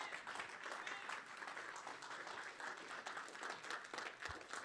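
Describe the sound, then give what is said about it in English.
A standing church audience bursts into sustained applause for the word of God, many hands clapping in a dense, steady wash of sound that stays loud and even for several seconds with no voices on top. “Give the word of God a big hand clap, will you?”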